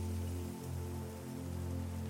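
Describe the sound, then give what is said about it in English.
Flowing river water at a cascading waterfall, running sluggishly as parts of the river begin to freeze, rushes in a steady, unbroken wash of hiss and splash, with a faint low hum beneath it and no voices. “You begin to hear the sound of a waterway up ahead.”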